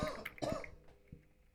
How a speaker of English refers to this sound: is still recovering from his COVID cough, so we will give him a quick break.